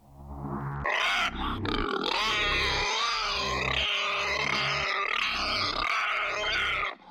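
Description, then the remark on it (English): A pig wallowing in mud on New England farmland grunts loudly in a steady run of rough, snorting bursts, some rising toward squeals, continuing for several seconds with no one talking. “he arrived at his new home on some New England farmland, wallowing in mud, in his own waste, as the pig he was.”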